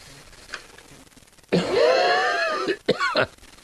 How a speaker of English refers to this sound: Oh boy, coughing is wonderful, isn't it?